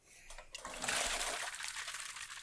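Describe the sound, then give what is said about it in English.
Water trickles and splashes steadily, a continuous liquid pour that swells after a brief start and keeps running without pause. “Your dick's really full of water.”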